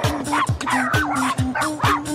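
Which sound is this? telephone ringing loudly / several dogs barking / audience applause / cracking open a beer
several dogs barking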